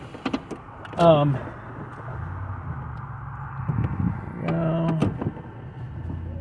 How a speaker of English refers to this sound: So I got to turn the car around. There we go, turning the car around.